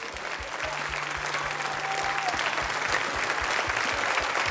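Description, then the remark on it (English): An audience bursts into sustained, loud hand clapping as praise to God, a dense wash of applause with steady rhythmic beats running underneath and a faint hum, building slightly and holding strong to the end. “And I want you to give God the greatest hand clap of praise you've ever given.”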